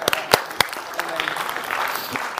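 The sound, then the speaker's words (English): A short burst of applause from a group, dense overlapping claps with a few sharper, louder hits standing out, plus faint murmuring underneath. “All right, now we can give her a clap.”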